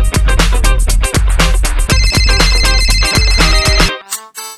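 A cell phone ringtone plays loudly, a bright, busy electronic melody with a thumping beat repeating for about four seconds before cutting off, with no voices over it.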